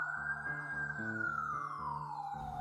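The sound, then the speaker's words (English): A loud police car siren wails in a residential neighborhood as the car pulls up across the street, its steady tone sliding slowly downward in pitch, with a low rumbling, pulsing background underneath. “The main road through our neighborhood was a half mile from our house, and by the time I got there, sirens were howling. A block on, a police car pulled up across the street, and an officer got out.”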